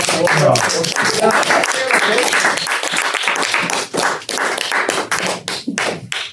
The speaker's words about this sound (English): Hey, can we get a round of applause for the minions real quick?